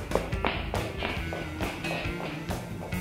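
A door being answered, heard as a run of sharp taps and light knocks in an uneven rhythm, with handling noise and no voices.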